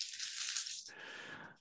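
household object, dice being rolled

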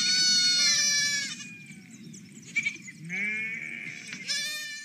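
animal, sheep bleating

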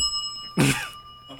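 signal or alarm, bell ringing

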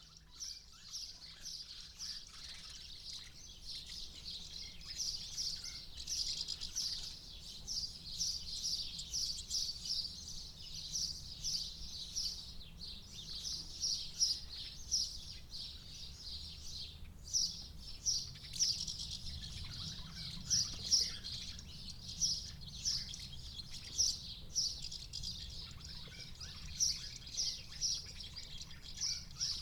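bird, sparrows chirping

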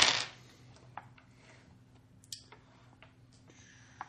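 household object, six dice being rolled

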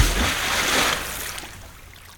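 sound effect, splash into water

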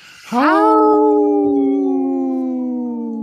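animal, wolf howling

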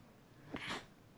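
human body sound, sneeze

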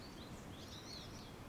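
bird, birds chirping outdoors

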